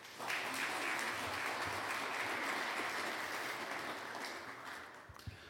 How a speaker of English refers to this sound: That's the first applause I've heard after that